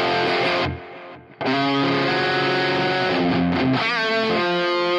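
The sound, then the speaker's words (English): A distorted electric guitar with a crunch tone, played through a drive pedal and a delay pedal, plays sustained notes and a short phrase, with repeating echoes trailing each note; loud, with a brief dip in level near the start and no talking. “Okay, here's our delay.”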